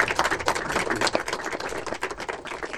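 An audience applauds a guest at This Is Not a Cartoon, a screening of international animated short films in Manchester: a dense, steady patter of many hands clapping at once that holds at an even level for about three seconds, with no voices on top.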